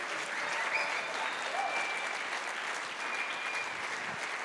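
A crowd claps steadily and continuously, a dense, even wash of applause that holds at a constant level throughout, with no voices standing out.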